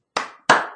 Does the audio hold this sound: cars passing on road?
no